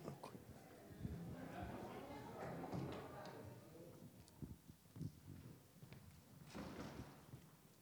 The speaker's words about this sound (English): I'm just going to close this door.